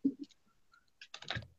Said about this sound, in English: Is anyone else on the call at the moment? Anyone else on the call, did you say? Yeah. No one else is speaking, just they're all typing in the chat window.